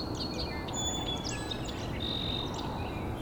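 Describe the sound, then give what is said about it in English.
Song sparrows in a swamp trade bright, buzzy trills and whistled notes back and forth in a territorial dispute, overlapping over a steady outdoor hiss, with no talking. “And these song sparrows are still arguing over a little piece of territory.”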